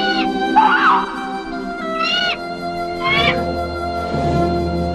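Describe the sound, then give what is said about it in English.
An eagle gives a run of high, squeaky chattering calls, three or four piping bursts spread over several seconds, fairly loud with no one talking. “Let's just hear some of that chatter they do here.”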